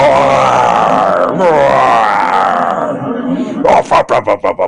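A loud, drawn-out roaring groan with a wavering pitch, strained, breaking off into a quick series of short, rhythmic huffing bursts at the end.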